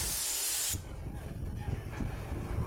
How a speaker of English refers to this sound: Yeah, you know, you can even hear that wind. Yeah. It is blasting wind into the bus at this point because you're outside the facility.